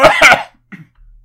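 A loud cough bursts out in two quick, harsh pulses, then fades into a brief, much softer throaty sound and near silence; the cough is given to get someone's attention while leaving a shop after making purchases.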